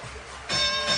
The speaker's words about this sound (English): Got it! 31 for Donovan Mitchell, the 8th time in his NBA career that he's had 30. Ring that bell.